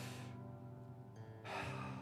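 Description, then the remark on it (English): A person deliberately breathes in and then out, imitating how the Hebrew name Yahweh is said like breathing: two airy breaths separated by a short pause, loud with no talking. “the way that they say it in the Hebrew is like, it's like breathing. So it's an in and out.”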